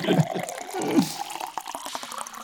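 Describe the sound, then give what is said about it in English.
Water sloshes and splashes, with gurgling swirls followed by a few light drips and small splashes, as a person shifts around while relaxing in a bathtub filled with cold water. “Yeah, I'm relaxing in my bath.”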